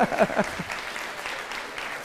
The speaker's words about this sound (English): So, if you're going to clap, then clap, all right?